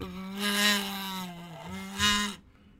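A steady, nasal buzzing hum hums through a wazoo, a kazoo-like toy with a horn, for about two seconds, low in pitch with a brief downward dip, swelling twice in loudness before cutting off abruptly.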